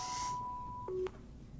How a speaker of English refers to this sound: Sorry, my phone's ringing.